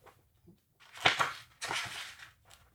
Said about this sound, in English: The high door opened with a jingle as he entered.